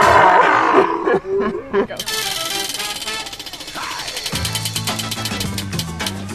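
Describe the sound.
A person lets out a rough, throaty growl imitating a cougar for about two seconds, then loud rhythmic music with a steady pulsing beat takes over.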